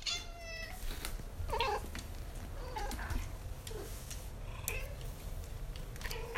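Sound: cats meowing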